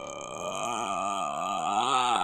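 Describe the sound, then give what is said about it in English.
A person imitates a ghoulish horror-film croak resembling Samara from The Ring: one sustained, raspy guttural groan lasting a couple of seconds, wavering slightly in pitch and holding steady in loudness, with no words spoken. “guttural noise that sounds a little bit like Samara from The Ring.”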